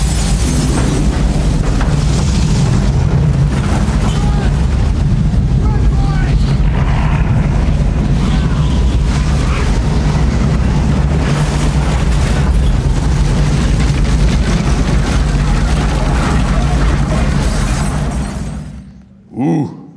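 A loud, continuous rumbling storm from a film scene, played with the bass turned up, dominated by heavy, booming bass, with crackling and crashing bursts over roughly eighteen seconds before it cuts off abruptly, followed by a brief low thud.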